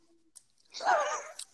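A brief burst of close, moist chewing noises lasting under a second, framed by a couple of faint clicks, fairly quiet with no talking.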